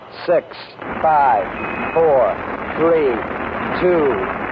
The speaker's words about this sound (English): 10, 9, ignition sequence starts.